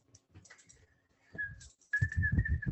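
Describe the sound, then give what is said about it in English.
Someone whistles in two stretches, a thin, steady note that wavers slightly, with breathy, rumbling noise underneath, the second stretch louder than the first. “I can't whistle very well.”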